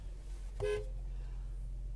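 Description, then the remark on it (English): A single short car horn honk, bright and tonal, sounded at another person, cuts in briefly over a steady low engine rumble, then the droning road noise continues alone. “We're just honking”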